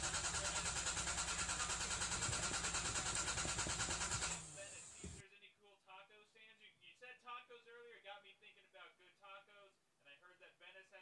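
A car engine cranks loudly and steadily for about four seconds without catching, then cuts out, leaving a person talking in the quieter stretch that follows.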